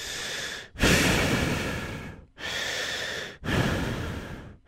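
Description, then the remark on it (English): A voice imitates the heavy, rasping, troll-like breathing of a heavy breather, four long loud breaths in a slow, steady rhythm with brief pauses between them and no speech. “And then while you're saying that, the heavy breather will be like this.”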